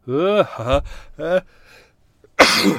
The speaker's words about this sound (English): Second sneeze. Oh, that's the problem with being light sensitive.